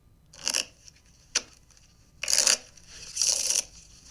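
Playing cards being shuffled in a few separate crisp riffling bursts with a sharp snap between them, no voices present.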